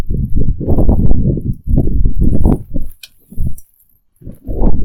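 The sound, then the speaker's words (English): A phone set on vibrate buzzes as it receives a call, in repeated rattling pulses, each lasting about a second, with short gaps between them. The low, gritty vibration is loud and heard on its own, with no talking. “Because you're trying to carefully listen for that vibrating sound.”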